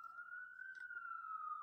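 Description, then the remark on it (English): A police siren wails, one sustained tone that swells slightly and slowly drifts back down, faint and steady with no voices over it. “You guys hear that siren?”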